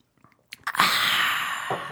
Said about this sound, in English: Let's take a sip and see.